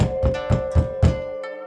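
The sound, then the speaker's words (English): Five firm knocks on a door in a steady, evenly spaced rhythm, each a dull low thud with a sharp edge, over a faint sustained tone. “The next week, a knock came at her door.”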